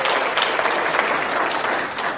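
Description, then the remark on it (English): An audience claps steadily for John Payne, a dense, even patter of many hands that stays loud and sustained throughout with no pauses or voices breaking through. “It's John Payne. Okay, give him a hand.”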